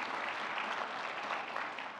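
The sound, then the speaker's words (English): An audience at Springboro Baptist Church applauds for the Lord Jesus Christ, a dense, even wash of many hands clapping at once that holds without pause for a couple of seconds. “Let's give applause for our Lord Jesus Christ.”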